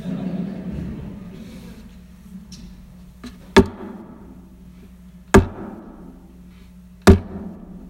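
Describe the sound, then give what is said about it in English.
Three sharp, loud strikes of arrows against the ground, spaced a couple of seconds apart, each a crisp impact with a short ring-off over a low steady hum. “And he says, strike the ground.”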